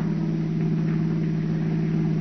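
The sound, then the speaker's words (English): The engine of a brand-new car being driven purrs with a steady, low, even hum, continuous, with no voices over it and no change in pitch. “Listen to that motor purr, Peggy.”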